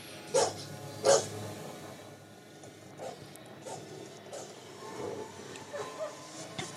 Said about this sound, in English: So, these are some sort of new predator dog creature. Yeah. And these are different than the ones from The Predator.